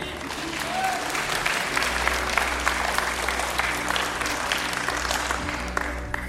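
An audience claps steadily throughout, a dense, continuous patter of many hands at an even loudness, with a low hum underneath and faint crowd murmur mixed in.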